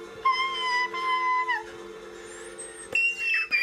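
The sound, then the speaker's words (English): A voice imitates a woman's whistle-register singing from a video: a thin, piercing sustained note that bends and breaks off, then squeaky glides leap even higher before a final shrill squeal. “but she was doing that whistle singing, and she was going so high, she was like...”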